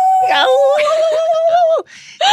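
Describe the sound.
A single long wolf howl rises into a steady, sustained note, holds for over a second, then drops away. A short, fainter cry follows at the end.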